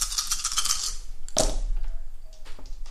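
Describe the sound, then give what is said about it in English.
Dice rattle and clatter across a hard surface for about a second, followed by a sharp knock and a few light, scattered clicks as they settle. Fairly loud, with no talking. “Betrayed by the dice every single time.”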